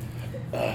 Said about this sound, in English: I'm burping. I had some cerveza. I'm sorry, guys.